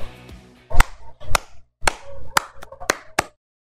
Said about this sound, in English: Well, that clap didn't turn out as good as I thought, but it's going to stay in there because why?